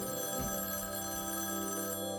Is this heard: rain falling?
no